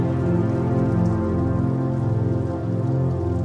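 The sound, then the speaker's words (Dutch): Steady rain patters against a window on a cold winter night, a continuous wash of droplets with a low rumbling undertone and no voices. “En terwijl je hier comfortabel in je bed ligt, word jij je bewust van het geluid van regen, tikkend tegen je raam.”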